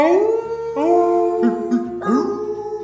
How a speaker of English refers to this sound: you see 4 dogs in the distance, pulling a great big sled full of supplies. They see you coming and let loose a chilling howl.